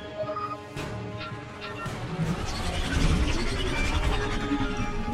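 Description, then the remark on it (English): A spaceship's engines roar with a dense, steady rumble and humming tones as it flies through an asteroid field near a planet, growing slightly louder and more intense toward the end, with no voices. “Shutting down the engines.”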